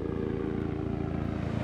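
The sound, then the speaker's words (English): A helicopter flies overhead above a wide shelly beach, droning steadily, its low engine rumble layered with a fast, even rotor chop that holds constant throughout the short clip, with no voices. “We walk to the end of this wide shelly beach, and I've just given up hope when all of a sudden, a helicopter flies overhead.”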